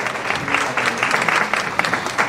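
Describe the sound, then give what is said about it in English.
An audience claps steadily for a couple of seconds for a group that supports guide dog users in Connecticut, a dense crackle of many hands at even loudness with no voices over it. “Let's give them all a hand.”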